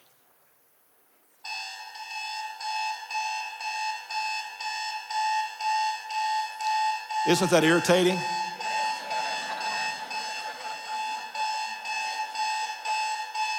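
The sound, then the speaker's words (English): An alarm clock beeps in a fast, steady pulsing pattern, loud, sounding continuously after a brief quiet start. Someone speaks briefly over it partway through. “And so we released the sound of an alarm.”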